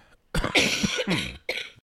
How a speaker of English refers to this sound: Simultaneous coughs here.